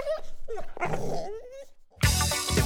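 Young pit bulls on choker chains growl, whine and yip in a tense scuffle, ending in a sudden burst of harsh snarling that sounds like dogs fighting.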